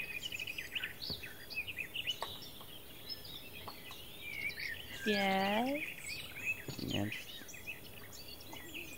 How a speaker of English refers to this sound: There's birds playing in the background.